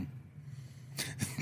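A quick sneeze breaks out near the end, a sharp breathy burst with a brief follow-up puff, over a low steady hum.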